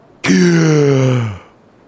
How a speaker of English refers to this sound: All of you wake up with a gasp for me.